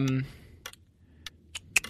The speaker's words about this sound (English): I'm going to put 60 seconds on this big bad clock starting now.